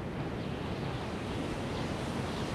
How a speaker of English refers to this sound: And all of a sudden then, we start to hear a lot of wind, a lot of really heavy, loud wind.